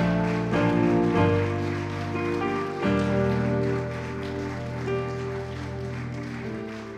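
An audience claps steadily and densely for several seconds to give God the glory, a continuous patter over sustained, droning musical chords, without pause or clear rhythm.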